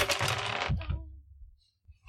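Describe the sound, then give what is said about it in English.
Dice clatter and rattle across a hard table for under a second, followed by a couple of soft thunks as they settle, then quiet. Fairly loud, with no talking. “8 and 6 is whatever I got 14.”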